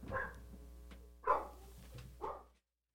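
A dog named Olive howls and barks upstairs in three short, tonal bursts spaced about a second apart, sounding muffled over a steady low hum, with no one talking.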